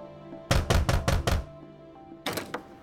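Landlords knock on a tenants' door: five firm, evenly spaced knocks in quick succession, then after a short pause a second, briefer burst of knocking follows over a faint steady background hum.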